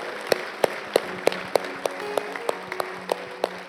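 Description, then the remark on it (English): An audience applauds, with a steady wash of crowd clapping and a crisp clap sounding about three times a second above it, accompanied by a low sustained organ-like tone. “Can we give God a round of applause today for what he's done in this place?”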